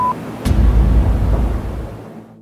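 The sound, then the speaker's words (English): A single sharp gunshot cracks out after a brief tone, followed by a heavy, rolling rumble that slowly fades over the next two seconds, from men shooting at a building. No one speaks. “I hear gunfire.”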